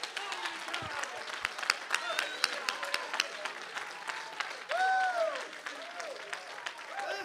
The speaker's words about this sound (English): Oh, somebody clap your hands and give God the high praise.